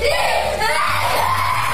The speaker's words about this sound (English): He's screaming, fix it. Pleading with Roblox.